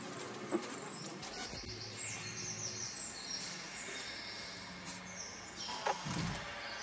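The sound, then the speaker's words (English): Natural bird chirps and song phrases flicker over a steady electronic hum and crackling, buzzy synthetic voltage textures in a musical piece, the two layers blending continuously at moderate volume with no voices. “The natural of the birds and the actually also natural of voltage.”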